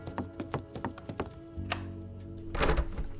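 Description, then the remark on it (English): A door is opened: a run of quick, dull thunks and taps, then a click, a low steady hum and a brief rattling burst near the end. No voices. “can you get the door?”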